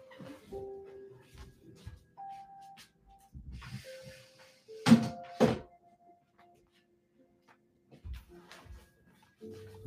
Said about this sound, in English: I'm gonna just shut the door. Give me a second.